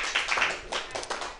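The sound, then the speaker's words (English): A comedy show audience claps steadily for a moment at a comedian's joke, a dense patter of many hands at moderate loudness with a few sharper claps standing out, and no voices on top. “The fact that I get applauded for being, you don't know what happened.”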